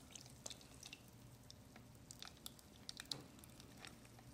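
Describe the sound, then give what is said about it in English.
Freshly squeezed lemon juice is poured, trickling and dripping in quick irregular drops, with soft splashes over a low steady hum. The sound is quiet and there's no talking. “And now, just pour it in there.”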